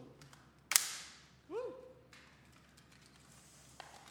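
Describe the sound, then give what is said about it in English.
Christmas cracker number three is pulled open during a show's giveaway with one sharp, loud snap that rings off briefly. A short rising vocal exclamation follows, and then it goes near quiet. “Can number three please open their cracker?”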